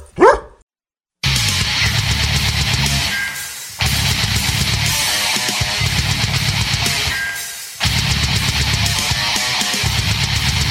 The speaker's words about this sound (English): Meet Barkley. When Barkley smells gas, he leaves fast. Barkley then calls 911 and Southwest Gas from a safe location. Did that dog just grab a phone and dial 911?